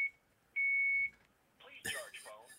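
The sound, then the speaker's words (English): A phone's low-battery alert sounds as one loud, steady high-pitched beep lasting about half a second, after a faint short chirp; moments later people start talking. “Your phone calls you to tell it to charge it?”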